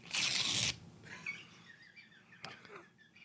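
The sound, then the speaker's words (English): A single sharp rip of paper, loud, lasting about half a second, followed by faint rustling and light high-pitched chirpy sounds in the background. “He just ripped a piece of paper.”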